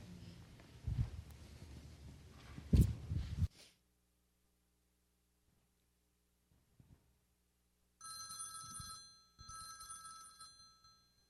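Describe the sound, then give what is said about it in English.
After a burst of loud noise and a silent pause, a telephone rings twice in steady bursts, each ring a bright, trilling electronic tone heard clear with nothing else over it. “Hon, could you get that? It's the phone.”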